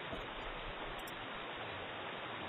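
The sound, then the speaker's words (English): A continuous, harsh rushing-water noise, like a flat wash of static resembling microphone feedback, holds steady for the whole stretch with no pauses or voices, used as water sound in an animated Bionicle short film. “Oh man, that like microphone feedback audio as water noise.”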